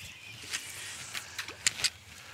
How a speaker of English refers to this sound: I was going to say, those sounds you can hear, they're just mullet jumping. They're not the bass. Fucking big mullet, though.